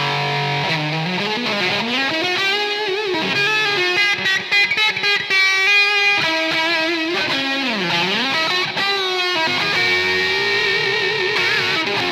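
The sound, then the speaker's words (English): A distorted electric lead guitar plays sloppy, bending, sustained notes soaked in heavy reverb and delay, with a washed-out, echoing tail, loud and continuous with no voices. “Way too much reverb, but like I say, mate, just covering that I haven't played in a while.”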